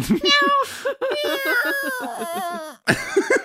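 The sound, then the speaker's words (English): A human voice imitates a cat, letting out a string of drawn-out, wavering meows in quick succession, fairly loud, with brief pauses between them. “Meow. Meow.”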